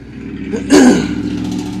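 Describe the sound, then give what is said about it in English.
A big jacked-up truck's engine rumbles, then roars in a sudden loud rev about halfway through before settling into a steady drone as it speeds off, with no talking. “That guy was angered, and he just sped off in this big jacked up truck.”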